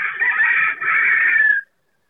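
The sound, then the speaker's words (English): A rooster crows loudly in a barn holding about 850 chickens and 15 turkeys, one long strained call lasting about a second and a half, with a brief dip midway before it trails off into silence. No one speaks. “I'm sitting here looking at about 850 chickens total, with the young ones and the old ones, and there's 15 turkeys there in the barn.”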